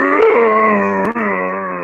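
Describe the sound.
A voice imitates the roar of a giant humanoid with a spear attacking and rocking a ship: one loud, sustained, growling moan held for about two seconds, low-pitched and steady, with a slight wobble partway through.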